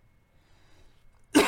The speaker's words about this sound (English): So now I'm worked up and now I'm coughing.